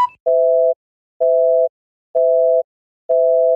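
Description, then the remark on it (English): A telephone busy signal pulses steadily, four evenly spaced tones with short silences between them, loud and clear with no talking over it, after a call dropped because the other caller's phone was dying. “I thought he meant he was just getting tired running out of juice, but he meant his phone was dying.”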